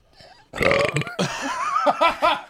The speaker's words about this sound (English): Tandem burp.